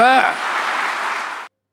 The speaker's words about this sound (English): did you hear the hearty applause there? Yeah, he's talking, preaching to the crowd there.